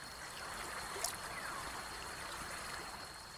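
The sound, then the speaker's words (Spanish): A steady rush of flowing stream water with a faint splash partway through as a man wades across the stream carrying another on his shoulders. No voices are heard. “Te cargaré sobre mis hombros y cruzaremos el arroyo.”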